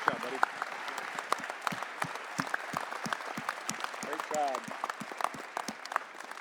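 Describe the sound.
A crowd claps steadily and densely throughout, recognizing people who work in parachurch organizations, sharp hand claps overlapping into a continuous wash of applause, with a brief voiced whoop or cheer rising partway through.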